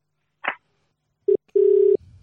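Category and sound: signal or alarm, telephone call tones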